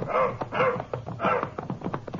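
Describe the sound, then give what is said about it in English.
A dog barks several times in quick succession, with a couple of louder, drawn-out barks followed by shorter, choppier yelps. There is no talking. “We switched from car to our horses and turned the dog loose.”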